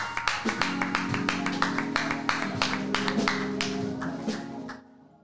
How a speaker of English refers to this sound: Why don't y'all give God a great hand back, clap of praise.